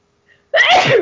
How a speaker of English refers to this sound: I'm going to sneeze, sorry.